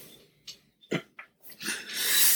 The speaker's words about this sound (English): You okay? Yeah. Okay. I was trying to hide a sneeze, but you had to ask me about it.